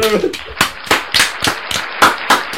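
Sharp, loud claps in an uneven rhythm, about eight over a couple of seconds, like a few people applauding. A brief voice is heard just before the clapping starts.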